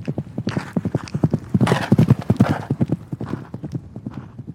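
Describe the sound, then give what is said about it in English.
Horse hooves clip-clop in a quick, steady rhythm, with a brief whinny rising over the hoofbeats midway through. “He liked horses, and he liked to ride them fast.”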